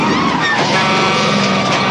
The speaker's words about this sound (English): The ice truck is not helping.